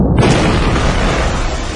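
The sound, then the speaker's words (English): A loud explosion sound effect erupts almost at once, a deep booming blast that stays as a heavy, rumbling roar of noise to the end, with no voices. “Everybody stand back, she's gonna blow!”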